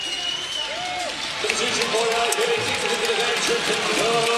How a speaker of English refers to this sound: The applause you can hear is for Trenton Flowers. He sees his first minutes. Good ovation for him.